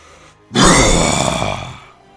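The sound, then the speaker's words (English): After a brief quiet moment, a single loud monster roar bursts in from outside: a harsh, growling, full-bodied bellow that holds for over a second, then gradually weakens and fades out. No one speaks. “And meanwhile, in the background, from outside, you hear a roar.”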